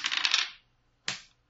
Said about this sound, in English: All right, Go ahead and roll a die.